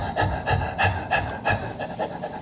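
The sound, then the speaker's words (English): A person pants rapidly through an open mouth, imitating a dog, with quick regular huffing breaths, about seven in two seconds, moderately loud, no words spoken. “But we are not a dog. I'm creating the image of God. So you're not supposed to breathe from here.”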